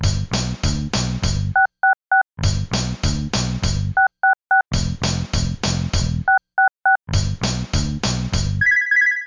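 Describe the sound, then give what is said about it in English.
Quick groups of three telephone keypad beeps, dialing 666 on a landline, alternate with loud, rattling bell-like ringing bursts, repeating four times before a steady electronic tone closes it out. No one speaks. “It's time to reach out into the ether and see who will answer the siren call of the landline of the damned. It's time to dial 666, the number of the geeks.”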